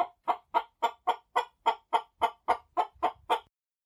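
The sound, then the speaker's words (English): A fighting rooster named Sergio, trained to attack a man on command and told to strike, clucks in a rapid, steady series of about fourteen sharp calls, fairly loud, with no voices over it. “Would a lunatic be able to train a fighting rooster to attack a man on command?”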